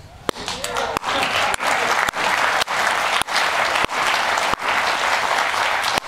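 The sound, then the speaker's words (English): A studio audience breaks into sustained, loud applause, a dense steady wash of clapping that holds for about six seconds with several brief dips. “Why are they clapping for you in the studio, man?”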